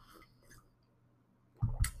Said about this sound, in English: Let's take a sip before we continue. That's really good. One more sip.